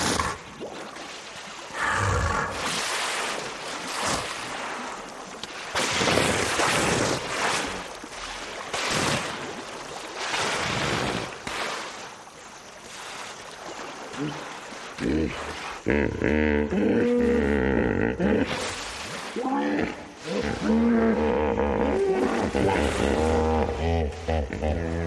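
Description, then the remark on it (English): About 20 hippos grunt and chatter as they come out of a river at dusk to feed, deep, rumbling honks and wheezing calls overlapping in a loud, continuous chorus, with the calls growing more resonant toward the end. “Recordist Chris Watson watched about 20 hippos at dusk emerge from the river for dinner. He recorded their chatter, which can be found along with other recordings of wildlife, on his CD called ….”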